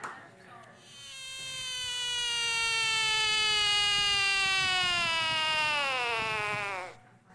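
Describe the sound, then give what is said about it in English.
A frog gives one long, buzzy, nasal call that holds steady for about six seconds while slowly sliding down in pitch, loud and alone before cutting off abruptly. “All right, the answer is a frog.”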